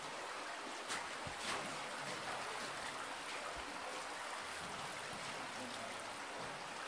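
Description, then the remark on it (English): Water from a waterfall trickles and splashes steadily down into the second chamber of a cave, a continuous hissing rush that fills the space, fairly loud, with no voices over it. “So they see the waterfall cascading down into the second chamber.”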